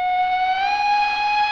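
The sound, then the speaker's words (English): A train whistle sounds in one long, steady blast, a bright, reedy tone with rich overtones that holds loud and nearly level throughout, with no voices. “Train of Duskwall is now arriving.”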